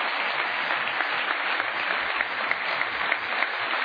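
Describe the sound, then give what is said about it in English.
An audience's steady round of applause for all the soldiers, dense overlapping clapping at an even loudness that fills the whole four seconds with no voices breaking through. “So just as a sign of appreciation and love for these guys, how about we just give a round of applause to all our soldiers?”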